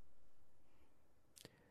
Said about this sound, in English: you moved the mic. That was not one thing. You tried to do two things. You tried to listen and move the mic.